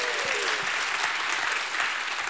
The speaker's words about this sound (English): If you're glad, give God a hand clap and a shout of praise.